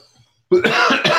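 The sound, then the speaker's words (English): After a brief quiet moment, a person who smokes breaks into a loud fit of harsh, raspy coughing, three or four rough bursts in quick succession. “You're still smoking, though, and coughing up lungs.”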